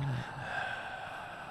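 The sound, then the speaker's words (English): A person imitates Bill Murray's long, drawn-out inhale from the film Zombieland, a steady breathy rush of air that stretches on for over a second, with no talking. “He was like breathing in for like the longest time.”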